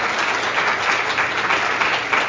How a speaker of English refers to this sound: But before we close things out, I think our panel deserves one last round of applause. So thank you so much for joining us today.